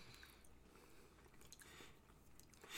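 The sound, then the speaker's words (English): Soft chewing of dense canned bread spread with butter, a steady run of moist squishy bites and small clicks with no talking, ending in a brief louder rustle. “Better, it makes it more like I can chew through it now and swallow it.”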